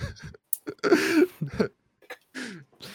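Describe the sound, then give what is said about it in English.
A loud sneeze bursts out with a voiced, throaty build-up, followed by a few short breathy vocal noises and snuffles before trailing off. “Bless you, you cocksucker.”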